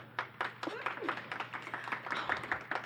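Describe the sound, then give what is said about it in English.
An audience claps steadily for a few seconds to vote for Anka Gams in a matchup, a dense patter of many hands at a fairly even level, with scattered voices and cheers mixed into the applause. “Okay, so if you would like to vote for Anka Gams, please clap.”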